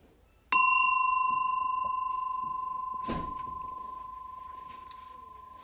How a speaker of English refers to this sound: So I'm going to ring my bell.